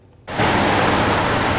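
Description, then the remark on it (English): After a brief moment of near silence, rain falling on a city street in Vancouver on a dreary day starts abruptly as a loud, steady, even hiss that continues without pause and with no voices. “On a dreary Vancouver day, shopping outside isn't the best for everyone. I hate the rain.”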